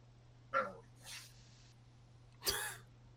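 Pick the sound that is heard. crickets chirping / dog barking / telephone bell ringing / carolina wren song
dog barking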